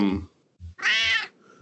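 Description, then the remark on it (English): A cat named Heidi Lynn lets out a single loud, drawn-out meow, with soft low thumps sounding before and after it. “My poor cat.”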